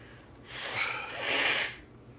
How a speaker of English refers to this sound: I'm going to blow my nose, so... All right, blow your nose.